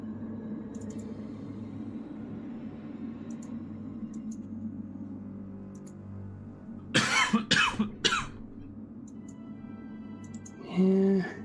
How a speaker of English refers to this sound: I hear coughing.